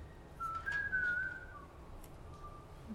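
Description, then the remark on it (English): A person whistles a single sustained summoning note of about a second, steady then slightly wavering, clear, over a low background rumble with no talking. “Her whistle of summoning a dead body.”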